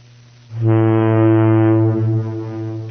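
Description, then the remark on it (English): A single long, deep ship's foghorn blast, presented as from the boat SS Minnow, sounds from about half a second in, a loud, steady low tone rich in harmonics that holds for over two seconds before easing slightly. “I was hoping it was a little faster of a boat, but that'll do.”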